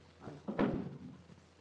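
A door opens with a single solid clunk and a brief rattle that fades quickly against a quiet background. No one speaks.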